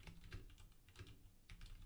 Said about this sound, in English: I'm sure you can hear me banging away on my really loud mechanical keyboard. Folks at the day job complain about my loud typing.